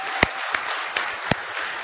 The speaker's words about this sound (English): Austin and Erica, engaged last week. All right? Round of applause for Austin and Erica.